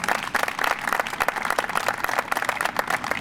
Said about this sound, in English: wanted to just a round of applause for the people in my program that do so much work in the Department of Parks and Rec, that the arborists and the trees and our inspectors and foresters around us, just a round of applause for all of their hard work.